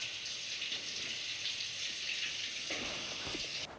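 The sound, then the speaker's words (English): Shower water runs in a steady, hissing rush, fairly loud, in a film scene where the character Marion dies in the shower, continuing unbroken for several seconds before cutting off abruptly at the end. No voices are heard. “The water running scene with the zoom out from her eye, then we zoom in on the newspaper with the money.”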